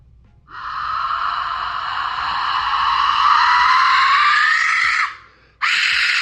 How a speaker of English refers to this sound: This is a fucking a raven death whistle.